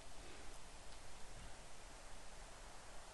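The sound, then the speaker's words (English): Steady, dense rain, a sound effect added to hiking footage from Greenland, hisses evenly throughout, a continuous wash of patter with no pauses and no voices, sounding fairly soft. “And again, some effects there. It wasn't raining at that time”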